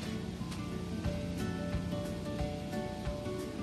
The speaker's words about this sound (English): The catalyst I'm using here is manganese dioxide. So let's see what happens when I put this into that solution. You can see right away how it's bubbling, how the oxygen is being given off.